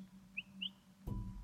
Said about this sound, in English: The sun shone warmer. The snow melted, and the birds twittered, "Spring is coming."